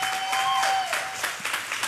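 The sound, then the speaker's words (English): A crowd applauds for a youth pastor, with steady, dense clapping that holds at a moderate level for two seconds, with a faint high whistle-like tone gliding briefly through the middle. “Can y'all clap it up for him?”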